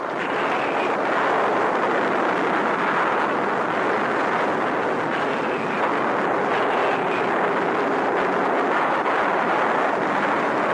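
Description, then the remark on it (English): Bombs dropped by Allied planes exploding on a railroad yard at Avranches on the Cherbourg Peninsula on invasion day, in a continuous, heavy roar, with blasts blurring into a dense, unbroken rumble that stays loud throughout, with no voices. “Explosives fall on a railroad yard at Avranches.”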